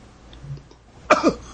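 A single close, sharp cough bursts out after a moment of quiet room tone, with a brief rough follow-through as it trails off.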